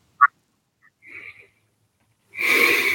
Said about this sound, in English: And that last time when you just got kicked out again, there was nobody in the room but myself, only my microphone, and I was hearing heavy breathing again.